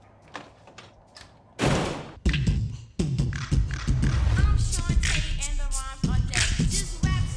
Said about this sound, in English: You want to be out there playing with all them hoes, and you keep your ass out there, but stop knocking on my goddamn door.